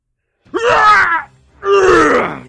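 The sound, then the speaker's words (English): Two loud, booming screams of pain from a character stabbed in the chest with a dagger, the voice filling a ship, each a drawn-out voiced cry that starts high and sags lower, separated by a brief gasp-like pause. “He's screaming, and his fist slams on the bed, and it cracks, and he falls out rolling with the blade still in his chest.”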